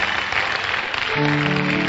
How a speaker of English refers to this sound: Amen. Clap your hands.